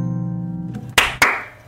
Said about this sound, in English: All right. Hey, still clapping. That was fun.